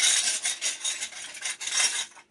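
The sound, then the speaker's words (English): Glass that someone has just broken scrapes and crunches in a steady, gritty rasp for about two seconds, bright and fairly loud with small swells, then cutting off abruptly. No voices are heard. “If you know what that sound is, it's broken glass.”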